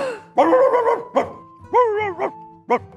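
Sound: dogs barking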